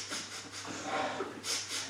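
A performer in a stage comedy act sniffs repeatedly as if sensing a ghost, a series of short, breathy, hissing intakes of air in uneven rhythm, with one longer, louder sniff near the end; no one speaks.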